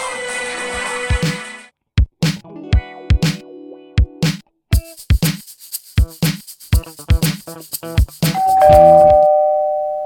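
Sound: doorbell ringing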